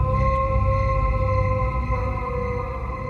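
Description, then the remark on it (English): A man in a hat, standing upright by a river in a clearing by trees with his head tilted back, lets out a long, blood-curdling howl with a steady, ringing pitch and strong overtones, holding loud for about three seconds before easing off slightly, with no talking. “standing upright by the river, his head tilted backwards as he let out another long, blood-curdling howl.”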